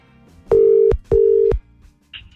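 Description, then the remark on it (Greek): Two steady ringback tones on a phone line, each lasting about half a second with a short gap between, loud and clear, followed by a faint click-like blip as the call connects; a radio morning show (Σοκαφέ, 104.8) placing a wake-up call to a listener. “Ελπίζουμε να πάρουμε τηλέφωνο και να το σηκώσει, να κάνει σε φταί.”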